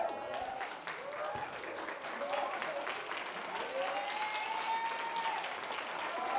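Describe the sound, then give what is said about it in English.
An audience claps their hands in a dense, steady wash of applause lasting throughout, with scattered cheers and voices rising over the clapping. “Oh, clap your hands.”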